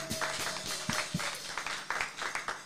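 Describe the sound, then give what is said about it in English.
A quick, steady run of hand claps, over a dozen sharp slaps in an even rhythm at moderate loudness, with no one speaking over them. “What a hand clap of plays. Hand clap.”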